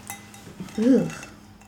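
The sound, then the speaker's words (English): A wine glass gives a brief, light clink of glassware as it is handed over amid soft tabletop handling, with a short murmured voice in the middle. “Here's your glass.”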